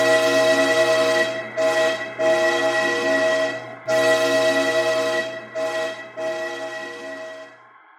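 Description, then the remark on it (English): A train rolling through a tunnel within the mountains, heading toward the coast, sounds its horn in several long, loud, harmonic blasts separated by brief gaps, the last one trailing off more quietly; no voices are heard. “We see a train rolling through a tunnel within the mountains of Moon Crescent, heading toward the coast.”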